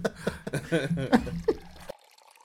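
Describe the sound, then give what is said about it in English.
Drinks are refreshed and re-poured: liquid pours into a glass, gurgling and splashing with a shifting, rising tone for about two seconds before stopping abruptly, leaving faint background hiss. “Drinks refreshed and re-poured.”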